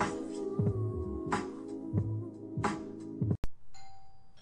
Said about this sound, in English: Just a regular doorbell, no big deal.